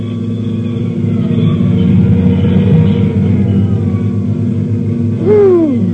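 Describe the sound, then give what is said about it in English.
Fire engines rumble loudly and steadily at night, coming up 4th Street in answer to an alarm at box 1167, Morton and 3rd Streets, a deep droning roll that fills the scene, with a brief rising siren wail cutting through near the end. “Nobody will remember anything but the engine.”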